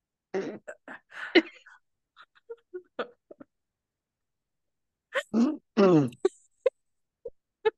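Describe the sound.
Someone blows a string of fake fart noises with their mouth into a microphone: short scattered sputters, a pause, then a couple of longer buzzy raspberries followed by a few quick pops. No one speaks.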